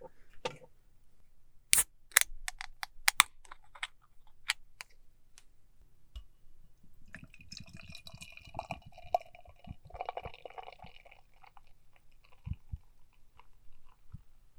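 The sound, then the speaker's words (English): A light, red-pinkish beer brewed with CTZ hops, with a lemon sour smell, sipped from a tulip glass: a few sharp clicks and taps at first, then several seconds of soft slurping and swallowing mouth sounds, with no talking. “We're advised to drink this out of a tulip glass, so that's what I've got here, and I'm going to go ahead and take a sip.”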